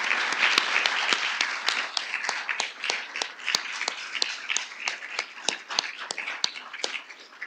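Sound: audience round of applause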